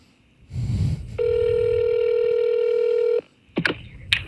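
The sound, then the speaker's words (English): A single steady electronic ringback tone of a phone call to the Lagunitas Brewing Company, lasting about two seconds, with a brief rustle before it and a few clicks afterward as the line picks up. “We'll leave him a voicemail.”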